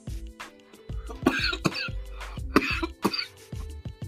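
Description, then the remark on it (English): A harsh coughing fit from smoking weed: several raspy coughs in quick uneven bursts with a throaty, hacking quality, and no talking. “That's a weed cough.”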